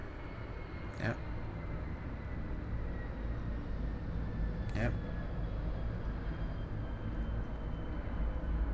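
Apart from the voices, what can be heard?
airplane flying overhead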